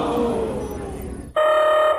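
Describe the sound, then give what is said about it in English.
An alarm goes off as Space Pirates arrive: after a second of rumbling, noisy background, a loud, steady electronic tone with buzzy harmonics cuts in abruptly and holds without a break until the end. “Can you turn the alarm down, please?”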